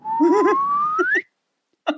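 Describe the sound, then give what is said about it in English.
A single upward-gliding sliding whistle sound effect slides steadily higher for about a second, with laughing voices underneath, then a short pause before another brief burst of laughter. “In a movie that has the sun set and the moon rise to a sliding whistle effect.”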